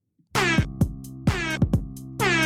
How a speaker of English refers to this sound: Here's the cool air horn. Ready?